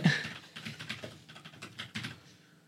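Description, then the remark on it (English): Rapid clicking of keys on a computer keyboard, a steady run of fairly quiet taps in an uneven rhythm with no one speaking. “You guys never type anything wrong on the keyboard?”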